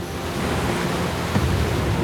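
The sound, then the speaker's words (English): A steady, dense rush of flowing water fills the whole clip, loud, the raging current of the river Styx churning without pause. “When the stream finally dumped Sisyphus into the river Styx, he was swept into the raging current.”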